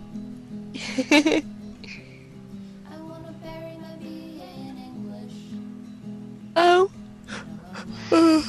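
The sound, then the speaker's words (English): A person yawns aloud, a drawn-out, wavering moan, with sharp breathy gasps of air at the start and end. “Oh, I'm yawning.”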